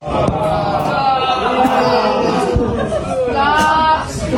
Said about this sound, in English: Booing and jeering. Interesting, isn't it? Why are you doing this to kids?